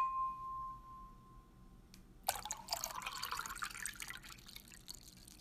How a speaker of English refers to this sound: But in the spirit of sitting in a cafe, I'm going to make a toast to new friends and pour a glass of water